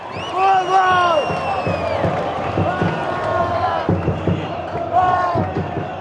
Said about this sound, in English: I went to Morumbi Stadium to record a game between Brazil and Bolivia, and the crowd was insane. I would just, you know, move around the stadium and listen for pockets of chanting and cheering or loud fans and listening for the energy.